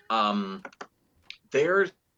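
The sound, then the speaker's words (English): A few quick computer keyboard taps click between longer humming, voice-like sounds, fairly clear, with short pauses between the bursts, as someone types while looking at the screen. “In fact, I'm literally, if I'm looking weird, like I'm typing and I'm looking at the screen, it's probably because I am.”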